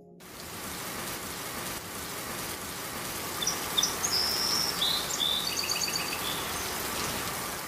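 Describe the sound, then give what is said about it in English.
Steady rain hisses across the whole clip, a dense wash of falling drops with no one talking, while faint high chirps of birds flicker through midway. “It's raining.”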